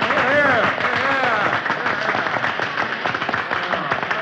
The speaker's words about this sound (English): The reunion was held in the Grand Army Hall in Milwaukee, Wisconsin, and on that day, Arthur made a speech. There were many members of the old 24th there that day, and as Arthur stood up on the speaker's platform, they all rose and applauded him.